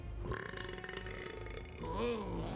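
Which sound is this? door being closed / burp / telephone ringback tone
burp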